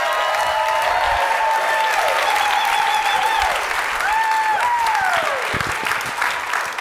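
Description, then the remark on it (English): An audience claps for a new president, steadily throughout, a dense, loud wash of applause, with whistles and a few cheers rising and falling over it, no speech. “So now, would you can sit, clap for him.”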